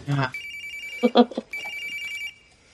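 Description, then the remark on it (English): A telephone rings in two steady electronic bursts, each lasting under a second, with short bits of talking at the start and in the gap between rings. “Was it Grady's secret phone? Either answered or turned it off.”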